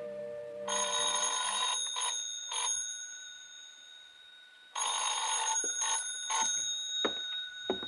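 A telephone rings in two long bursts with a short pause between, a bright, shrill, rattling bell tone with sharp metallic overtones, loud and alone with no voices.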